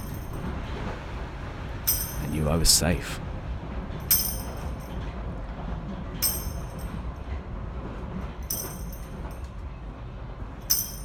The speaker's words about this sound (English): The train started moving again.